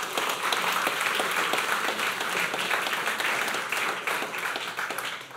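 An audience bursts into steady, dense applause to welcome a speaker, many hands clapping at once in a continuous loud wash that holds for several seconds before easing slightly at the end.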